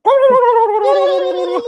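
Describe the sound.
A turkey call gives a loud, warbling gobble, one continuous quavering tone lasting under two seconds with a slight rattling flutter, heard alone without any talking.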